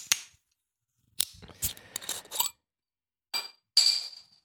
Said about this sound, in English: My bottle cap has fallen. My bottle cap.